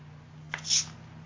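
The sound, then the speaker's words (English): A can of Diet Coke cracks open: a sharp pop of the tab, then a short, bright fizzing hiss of escaping carbonation over a low, steady background hum. “Get cozy with your water and Diet Coke if you're feeling spicy.”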